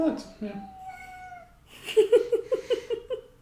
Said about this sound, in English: Our cat is very vocal tonight.